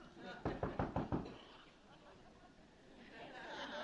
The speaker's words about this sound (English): Okay, do y'all hear something? Okay, let me go answer the door.